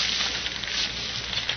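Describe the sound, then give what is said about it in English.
A burning car fire roars steadily, a dense rushing hiss with faint crackles and pops scattered through it, holding at an even level with no voices. “Here, that's no bonfire. It's a car burning.”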